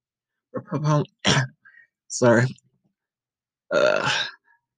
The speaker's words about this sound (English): Clearing my throat.